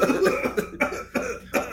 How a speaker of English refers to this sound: Then we come back and we're still coughing.